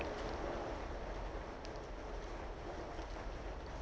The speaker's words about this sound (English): And I apologize if you all may hear the rain battering against my window. It's a really hot day today. And all of a sudden, a cloud has just rolled in. And just like that, the rain has started falling.